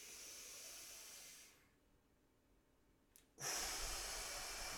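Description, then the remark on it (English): Slow, controlled box breathing: a long, steady breath, then a held pause of near silence, followed by another slow, airy breath. Controlled and unhurried, with no talking. “I'll do my box breathing techniques when I'm in there.”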